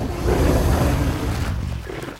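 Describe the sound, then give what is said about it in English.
A deep, rumbling T-Rex dinosaur roar sound effect, loud, sustained for about two seconds before tapering off slightly, with no voices. “I think crucially that we've become completely normalised with the thought that T-Rex spent its life roaring.”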